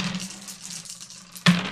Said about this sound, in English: We're going to first roll some dice and sort of pool those all together, and that'll be a shared resource for us.